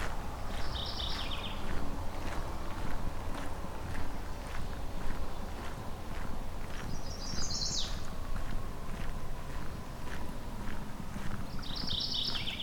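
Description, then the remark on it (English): Steady footsteps crunch along a roadside in the Currie Tract, Halton region, at an even walking pace, continuing throughout, while a few short bird songs ring out intermittently over a low outdoor rumble. “I'm gonna go walk alongside the road here, see if I can get a view on any of these.”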